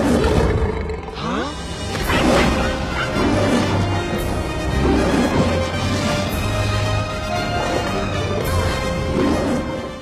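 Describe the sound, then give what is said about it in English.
A film scene in which Mufasa fights the hyenas: a loud, chaotic animal fight with a lion's deep roars and snarls clashing against shrill, cackling hyena yelps, layered with crashes in a dense, continuous soundtrack mix and no talking. “And here's a clip from the film where Mufasa fights the hyenas.”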